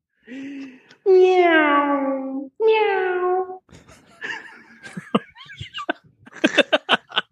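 A voice imitates a cat with two loud, drawn-out meows that slide downward in pitch, followed by a run of short clicks, gasps and hiccup-like bursts.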